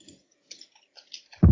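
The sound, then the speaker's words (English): People typing on keyboards: a handful of soft, irregular key clicks spaced out over a quiet background, ending with a sudden loud, low thump. “I can hear people typing.”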